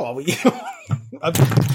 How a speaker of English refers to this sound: I got him so hyped up, he banged his microphone.